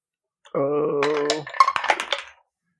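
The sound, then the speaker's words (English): A steady, buzzing low tone gives way to a quick burst of hard clicks and clatters as dice are rolled for initiative in a tabletop role-playing game, tumbling and rattling across a table before settling, with no one speaking. “Why don't we all take a moment to roll for initiative?”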